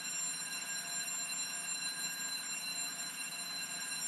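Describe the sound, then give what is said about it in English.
A hairdryer drones steadily in the background, a constant high-pitched electronic tone with bright harmonics that holds at an even level throughout, with no speech over it. “Yeah, well, I think really, apologies for the fire alarm in the background, it's just a hairdryer.”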